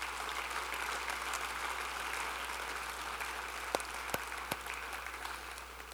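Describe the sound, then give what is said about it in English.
On a cold day, a church audience applauds the snow crew in a steady, dense wash of clapping that holds at an even level for the whole stretch, with a few sharper individual claps standing out near the end and no one talking. “Man, can we give a big round of applause for the snow crew that just keeps...”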